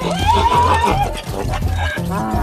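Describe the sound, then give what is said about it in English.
A donkey brays loudly, a harsh, drawn-out honking call lasting a couple of seconds over a busy background. “Get over here, you jackass.”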